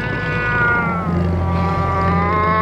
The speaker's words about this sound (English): The cat let out a thunderous yowl, jolting Margrét from her terrified stupor.